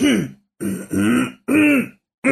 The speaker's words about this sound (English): I'm sorry. Perhaps this was a bad idea. I thought I was better. Well, you'll just go back and edit out all the coughs, right?